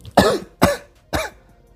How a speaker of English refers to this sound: That was like a half choke, half cough, and then a little bit of a laugh. All mixed in one, right? It's never just one thing.